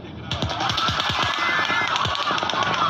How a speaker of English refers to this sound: What sounded like automatic gunfire rang out late Sunday night, the bullets spraying into a crowd of roughly 22,000 concertgoers on the Las Vegas Strip.